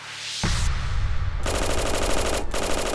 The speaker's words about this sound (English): The men the cops had led into the building opened fire, spraying bullets from their Thompson submachine guns. All seven men were cut down, their bodies nearly sliced in half by the ceaseless barrage of bullets.